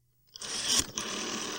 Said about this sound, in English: Just a second here while I dial the phone. I've been meaning to upgrade my phone, but yeah, who has the time?